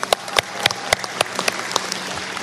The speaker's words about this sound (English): So in the honor of brevity, I'm not going to mention all of their names, but I just want to give them a big round of applause and say thank you.